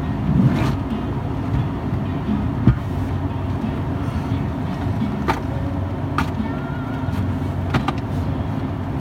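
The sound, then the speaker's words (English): A steady rush of cool air blowing from a car's vents into a very hot car cabin, over a constant low rumble, with a few sharp clicks scattered throughout and no one speaking. “It's probably about 100 fucking degrees though, considering how hot it is in this car”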